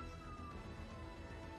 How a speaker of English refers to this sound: Are you hearing that siren? We're in my apartment. You are? Yeah. Yeah, we're in my apartment up here in Vancouver, and it's pretty high up, but there's there's definitely something going on outside.